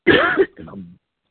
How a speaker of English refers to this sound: Somebody coughing hard on the phone, man. You killing me right now. That's you. Mute your phone.